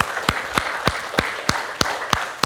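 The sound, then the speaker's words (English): Audience applause with a steady, rhythmic beat: about eight sharp claps at roughly three per second stand out above a continuous wash of softer clapping and crowd noise. The applause is for the mothers in the audience, in the morning. “Let's give our mothers a round of applause this morning.”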